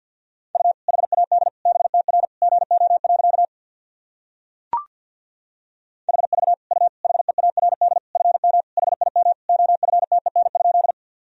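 Rapid Morse code at 50 words per minute, sending sentences built from the top 400 words and abbreviations: a single steady mid-pitched tone keyed into quick dots and dashes, in two long runs separated by a pause with a brief click.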